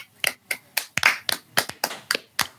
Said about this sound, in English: Damn. I never thought I'd have to clap to you fucking.